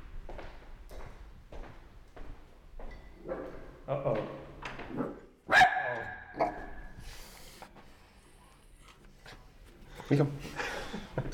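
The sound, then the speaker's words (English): A dog barks a few times in short, sharp bursts, with one louder bark standing out midway, over a background of murmuring voices and rustling noise. “My dog's going to fuck you up.”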